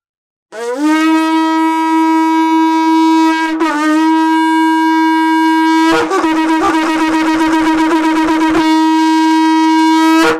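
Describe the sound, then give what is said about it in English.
A kudu horn shofar blown in one long, loud, low blast with a rich brassy tone; it wavers briefly, turns raspy and rattling partway through, then holds steady to the end. “And then we've got the kudu, and this is actually our favorite, my family's favorite corn.”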